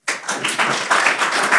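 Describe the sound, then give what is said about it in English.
An audience breaks into applause for the DAG chair (voorzitter) at the table: a dense, steady wash of many hands clapping at once, starting abruptly and staying loud throughout, with no voices standing out. “And give a big hand of applause to our DAG voorzitter, here at the table,”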